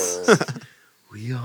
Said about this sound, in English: Put coughing on the mic.